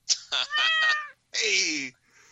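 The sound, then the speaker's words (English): A cat meows insistently, a quick chirpy trill of pulses followed by a longer, drawn-out meow that slides downward, with a faint rustle trailing after. “He's a very smart cat.”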